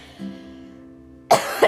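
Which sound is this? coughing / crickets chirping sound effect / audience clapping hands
coughing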